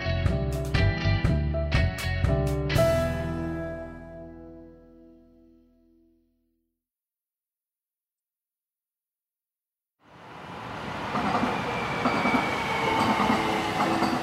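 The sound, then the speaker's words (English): After a few ringing musical notes fade into silence, a Gold Line light rail train arrives at the Highland Park station in Los Angeles, between downtown LA and Pasadena, a steady loud roar of wheels on track with a faint high squeal. “When the Gold Line train arrives at the Highland Park station between downtown LA and Pasadena, passengers get off in a rapidly gentrifying part of Los Angeles.”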